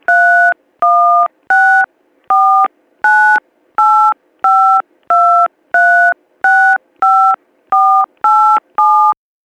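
A rapid string of about fifteen touch-tone telephone beeps as tracking numbers are keyed in during a prank phone call, each a short, loud two-pitch tone separated by brief gaps in a steady rhythm, with no voices.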